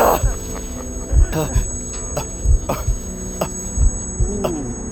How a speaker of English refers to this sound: Sound was pulsating in and out of my ears, in time to my deceptively calm heartbeat.